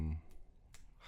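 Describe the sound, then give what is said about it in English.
Three sharp, fairly crisp finger snaps spaced unevenly across a second, after a brief low voice sound at the start, made while someone tries to remember something. “What's this jazz player for? I couldn't bear clicking.”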